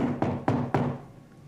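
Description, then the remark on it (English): Three firm knocks on a door, a louder second attempt after no answer, in a quick, even rhythm, each a sharp thud with a short ringing tail, followed by quiet. “I knock louder.”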